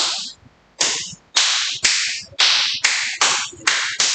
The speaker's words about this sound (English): Oh, now this is bare ass slapping. That's one of my favorites.